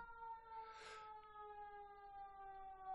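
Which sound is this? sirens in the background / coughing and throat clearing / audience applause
sirens in the background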